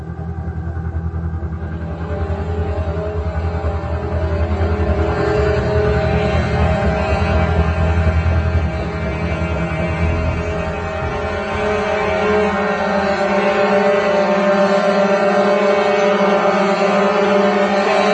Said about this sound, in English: Sound of the dreaded terrorist honking.